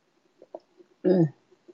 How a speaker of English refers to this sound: Let me clear my throat with a sip of this most excellent cocktail.